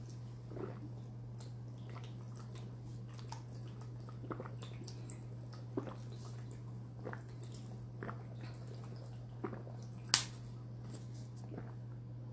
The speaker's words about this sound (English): Hold on, let me drink this water real quick.